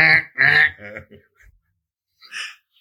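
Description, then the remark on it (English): A human voice gives a string of nasal, strained quack-like bleats, three or four in quick succession, then a short pause and one more fainter squawk, like an imitation of a hurt duck. “Like a wounded duck.”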